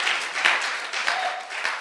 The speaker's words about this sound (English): Hallelujah. Why don't you clap for Jesus?